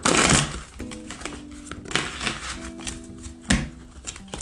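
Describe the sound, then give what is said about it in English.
A romance tarot deck being shuffled to draw clarification cards during a reading, with a burst of riffling at the start followed by irregular soft slaps and swishes of cards, and a faint tonal hum in the background. “Shuffle these.”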